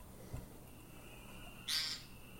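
A single short, nasal, buzzy common nighthawk call rings out clearly against a quiet background with a low steady hum and faint tonal noise.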